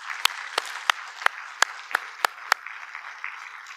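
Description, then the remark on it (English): An audience at Valley Bible Church applauding its deacons: a steady wash of many hands clapping, with sharper individual claps standing out in an even rhythm about three per second, continuing for several seconds. “Would you give them a hand of applause?”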